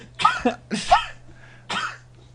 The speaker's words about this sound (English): is not covering his mouth when he coughs, and we are all about to die. You're like are you actually trying to cough right now or not?